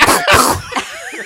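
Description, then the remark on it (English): A person imitates a cat hacking up a hairball: two harsh, raspy coughing bursts followed by a strained, gurgling wheeze, loud, with no speech. “Hairball. That was a hairball.”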